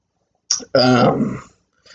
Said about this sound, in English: Like, I never get, like, wheezy. And cough. Like, I'll cough like this for